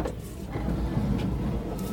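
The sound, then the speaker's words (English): A car's automatic sliding door beeps twice and opens with a steady low mechanical whir; the brief high-pitched electronic beeps are barely audible above the motor. No one speaks. “But so at any point in time, the door next to me, and this is the sound it makes, it beeps twice and then here we go.”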